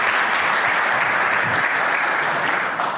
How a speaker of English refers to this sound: Thank you. Somebody give that man a round of applause. My goodness. I wasn't joking. That's worth a clap. Come on.